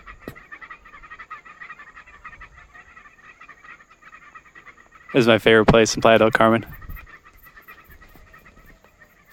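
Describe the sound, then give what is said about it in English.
A dense, steady chorus of birds chirping in a sanctuary at Playa del Carmen fills the background throughout, with a person speaking briefly and more loudly over it partway through. “Listen to these birds chirping.”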